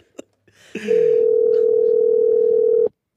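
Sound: telephone call ringing out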